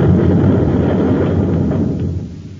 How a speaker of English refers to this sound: They've torn up a whole hunk of the plant with their nose rockets. They'll keep blasting away till they're sure we're finished.